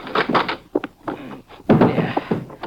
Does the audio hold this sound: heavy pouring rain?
no